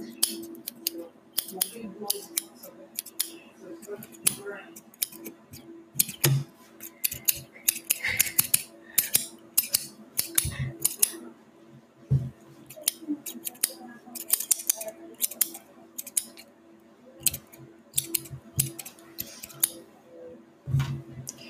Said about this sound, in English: I'm going to go with my different scissors, and I'm just going to get those even edges out, okay, to frame your face.